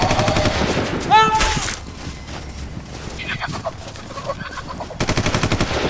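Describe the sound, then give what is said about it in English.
Loud bursts of rapid gunfire aimed at a bird in the trees open and close the stretch, with sharp squawking bird calls breaking through in the quieter middle. “On the bird! On the bird! Just shoot her!”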